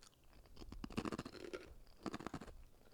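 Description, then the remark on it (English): Crunchy chewing on a dense, quarter-sized round oven-baked Taco Bell snack with Taco Supreme flavor, with rapid crackling bites in two bursts separated by a brief lull, loud with no talking. “It's a craveable, crunchy, oven-baked snack.”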